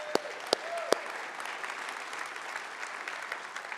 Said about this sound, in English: Let's clap for that.